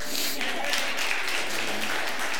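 A crowd applauds steadily for a volunteer who has come up, many hands clapping at once in a dense, continuous wash of sound that stays at an even, moderately loud level throughout.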